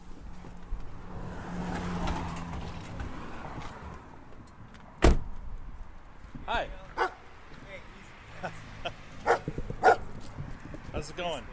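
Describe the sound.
A large Bernese mountain dog named Bentley barks several times in short, scattered bursts in the driveway of a bungalow in the north end of a city, over a murmuring outdoor background, with faint voices and one sharp thump partway through.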